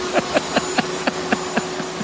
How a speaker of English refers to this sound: Your husband loves to vacuum. I know. He does. He really loves to vacuum. Anyway. He stopped.